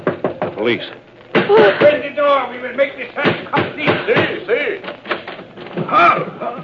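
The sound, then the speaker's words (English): Heavy pounding knocks strike a door in quick repeated bursts, loud, while a man's voice talks over and between the blows; police are at the door demanding that it be opened. “Police. Open the door.”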